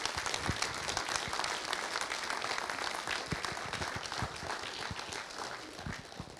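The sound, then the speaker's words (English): An audience claps steadily for several seconds, a dense, crackling wash of many hands with a few sharper individual claps standing out, fairly even in loudness throughout. “Can everybody just give these guys and girls a round of applause, please?”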